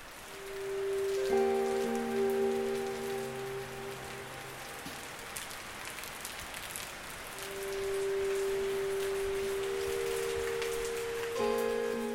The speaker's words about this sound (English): It was raining outside